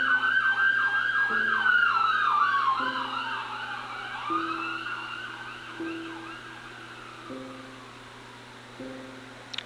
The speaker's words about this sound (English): was an ambulance passing by outside my window.